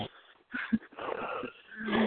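A person snoring close by, with a raspy, wheezing inhale followed by a longer rough breath that rumbles low near its end. No talking over it.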